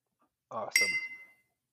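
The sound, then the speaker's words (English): A single bright glass clink rings out from a person toasting alone with a glass of Peruvian pisco, its high tone lingering briefly while a voice murmurs underneath. “Did you just cheers yourself?”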